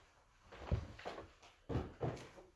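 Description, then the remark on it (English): A door is handled, with a few solid clunks and rattles spaced unevenly over a couple of seconds, as it is opened to throw a watch out. No one speaks. “And my watch somehow doesn't catch the memo. I get it. But it's making me throw this out the door.”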